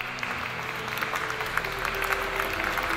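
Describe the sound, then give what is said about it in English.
A small group of people at a table burst into applause, a dense, steady patter of hands that holds throughout, moderately loud, with a faint low hum beneath. “And the entire table bursts into applause.”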